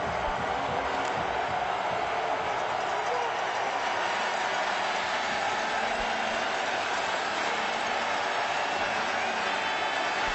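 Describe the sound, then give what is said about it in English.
The Bombers' home crowd roars in a big football stadium in Winnipeg during a game, a dense, unbroken wash of noise that stays loud and steady for the whole stretch, with no pauses or distinct voices standing out. “Home crowd sound from the Bombers.”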